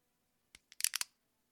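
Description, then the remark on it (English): The screw-top cap of a bottle of mead cracking open: a quick run of sharp, bright clicks and snaps, one small tick then a tight crackling burst of about five louder pops, with no talking. “That was a good crack. I drink the screw top stuff because, you know, I'm fancy.”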